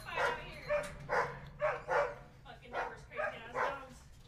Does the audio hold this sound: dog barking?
yes